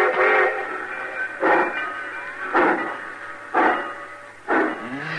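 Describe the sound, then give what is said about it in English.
A train's whistle sounds in five loud blasts, each roughly a second apart, over a steady low rumble as the train pulls out on time. No one speaks. “Cussing train pulling out right on time at once.”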